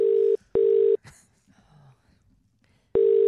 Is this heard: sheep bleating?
no